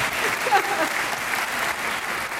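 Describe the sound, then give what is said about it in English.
Steady audience applause for the speaker, executive director of Sally Ride Science at UC San Diego and Sally Ride's longtime partner, a dense wash of many hands clapping at an even, moderate loudness throughout with no voices rising above it. “You can clap. Please clap.”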